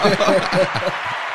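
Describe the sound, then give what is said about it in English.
A short burst of canned applause played by pressing a soundboard button, dense crackling claps with crowd voices cheering underneath, loud at first and easing off slightly over about a second and a half. “Yo, you got to give a round of applause to yourself, man. Press that button, man.”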